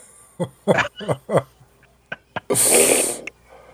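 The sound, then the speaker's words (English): A voice imitates snoring with four quick, rasping snorts in a row, a couple of soft clicks, then a long loud breathy hiss. “It's snoring.”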